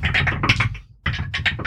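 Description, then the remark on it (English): Dice clatter down a dice tower in two quick bursts of sharp, rattling clicks, separated by a brief pause, rolled for Constitution saving throws. The tumbling is fairly loud and bright, with no voices. “That was nice dice sound. That was nice dice. That's one of the reasons I like using this particular dice tower.”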